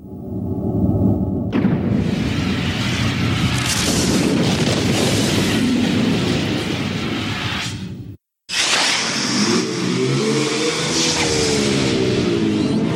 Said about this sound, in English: I remember the very first time playing it, because it's got this huge kind of explosion at the start.